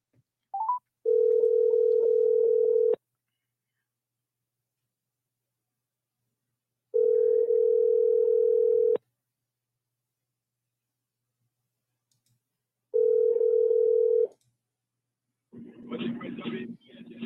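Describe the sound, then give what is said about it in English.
An outgoing phone call to a scammer: three long, steady electronic hums, each about two seconds, separated by several seconds of silence, clear, before a voice briefly speaks at the end. “Y'all gonna start going, oh, on Fridays we can't answer a phone. Because Sandy calling scammers.”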